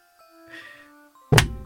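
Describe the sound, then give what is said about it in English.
A hand knocks into a microphone stand once, a sudden loud, heavy thunk with a deep boom that rings briefly, following a stretch of faint hum and quiet rustling. “I hit the mic stand.”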